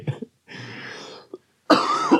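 A person coughs in several separate bursts: a short one, a longer rough hacking stretch, a tiny catch, then a loud, harsh final cough. Close and fairly loud, with no talking.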